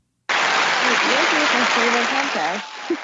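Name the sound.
hand claps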